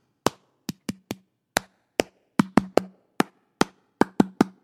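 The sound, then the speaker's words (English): Sharp hand claps, about fourteen in all, come in an uneven rhythm with short clusters and pauses between, clapping along to the children's song Bingo. Each clap is crisp and fairly loud against otherwise quiet background. “Get ready to clap.”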